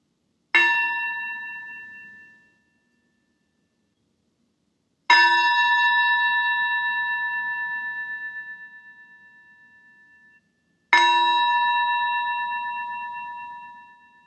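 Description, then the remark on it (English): A bell is struck three times to call an audience into worship, slow and evenly spaced, each clear metallic ring sustaining and fading away before the next. Fairly loud, with no voices. “I now invite Sunanda to ring the bell to call us into worship”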